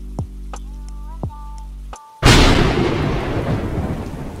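After a brief hush, a sudden thunderclap crashes in loudly overhead, then rolls into a long, heavy rumble with a rain-like hiss of sharp rain, as scattered bolts boom over the Acroceraunian hills and crash down among the valleys. Soft low tones and faint chimes play beforehand.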